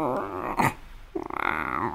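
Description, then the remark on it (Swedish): A voice imitates the speaker's own stomach rumbling during an illness, likened to an alien: a strained, nasal whine, a brief breathy burst, then a stuttering, gurgling growl with fast pulses, all without words. “Alltså det var lite som att alltså ljuden från min mage under den här tiden, det var som en utomjording, kan jag tänka mig. Alltså det var ett gnällande, kvävt, skorrande.”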